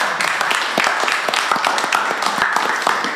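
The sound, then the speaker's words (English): An audience applauds steadily, a dense wash of many overlapping hand claps at an even, fairly loud level, with a few sharper individual claps standing out in the crowd. “So thank you for the clap.”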